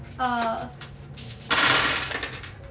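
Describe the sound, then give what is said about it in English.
Dice rolled for damage tumble and clatter across a hard surface in a short, bright rattling burst that quickly trails off, following a brief vocal sound and faint background murmur. “So let me go ahead and roll some like the damage.”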